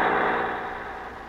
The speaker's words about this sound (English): So let's go out to you-know-who's house in Beverly Hills and... Uh-oh, there's an express truck turning the corner into guess-who's street.